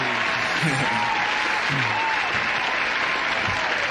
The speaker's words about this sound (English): Well, let me hit the round of applause for my guy, man.